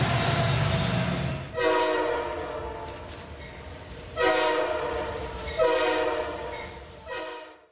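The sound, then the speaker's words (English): A loud train horn blares in several long harmonic blasts, separated by brief pauses, over the steady low rumble of a rolling train. “All aboard the Taysom train. Conductor Dave is on the Taysom train.”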